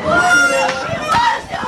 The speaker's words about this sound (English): Residents of the island of Crete scream in disbelief during a live television report as their 111-year-old landmark stone bridge is destroyed by floodwaters.